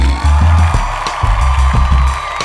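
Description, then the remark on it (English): A loud, continuous crowd cheer sound effect with whoops and scattered applause runs for a couple of seconds, layered over deep, thumping low notes that rise and fall in steps. “Thank you very much, crowd.”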